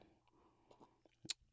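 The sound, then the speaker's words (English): A quiet sip of bourbon whiskey: soft wet mouth sounds, then a brief sharp slurp and swallow near the end, with no talking. “Let me take a sip.”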